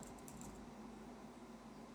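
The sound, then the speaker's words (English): A few quick, soft clicks of computer-keyboard typing in the first half-second, fading into a steady low hum of room or fan noise with no voices. “Sorry, I gotta turn this keyboard back on.”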